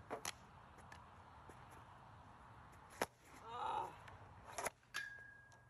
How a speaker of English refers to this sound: Dude, the slap shots. That's so satisfying. What? Dude, the slap shots are good. That looks so dope.